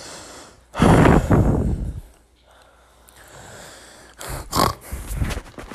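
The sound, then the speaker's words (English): Loud breaths rush into the microphone: one long, heavy exhale, a pause, then several quicker snorting breaths in and out toward the end. “So they can hear me breathing.”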